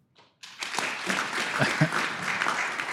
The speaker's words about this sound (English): All right, zero people, and we'll do clapping from now on. Next. All right, clap if you think that was Lyndon Rive, CEO of SolarCity.